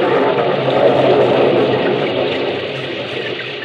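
A car engine hums steadily with broad road noise, slowly fading as the car pulls away from a parking lot, driving out to a house on a cliff. No voices are heard.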